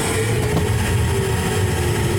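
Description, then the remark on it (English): A pneumatic tube system, just switched on, runs with a steady, loud whooshing roar of air over a low motor hum, holding constant and unbroken throughout with no voices. “We're calling it officially now Tube Tunes because we have to use the pneumatic tube. So let's flip it on here.”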